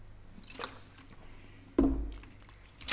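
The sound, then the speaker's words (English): Someone drinks fruit water from Israel quietly: a faint wet sip, then a louder, thicker gulp or swallow partway through, ending with a small click. No one speaks. “I need a drink. And remember, Israel's finest. This is fruit water.”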